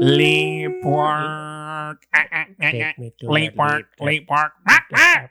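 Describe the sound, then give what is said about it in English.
A voice loudly imitates the squawking aliens of Mars Attacks: two drawn-out nasal squawks, then a rapid run of about eight short, clipped 'ack'-like bursts in a choppy rhythm. “You sound like a chicken. No, that's what they sounded like.”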